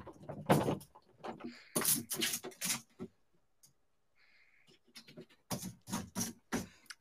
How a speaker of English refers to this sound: I'm going to fit through this dog door right here. Let me just try it.